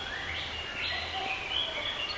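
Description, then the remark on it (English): Soft, high calls and chirps from birds walking on a road just in front of the listener, against a steady outdoor hiss, with a few thin whistled notes rising over the constant background. No one speaks. “Oh, wow, these birds are just on the road here in front of me.”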